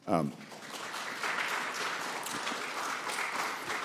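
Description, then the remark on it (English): An audience claps steadily in a dense, sustained wash of applause, loud and even throughout, with a brief voice at the very start. “Y'all keep clapping, us politicians just keep talking.”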